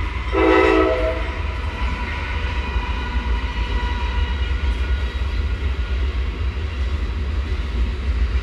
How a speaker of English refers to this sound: Here comes a train.